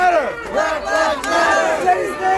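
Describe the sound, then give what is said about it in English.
A crowd chants in unison at a Black Lives Matter protest in downtown Asheville, many voices rising and falling in a steady repeated rhythm, loud and continuous with no single voice standing out. “the pride and passion she felt early this summer as Black Lives Matter protests unfolded in downtown Asheville.”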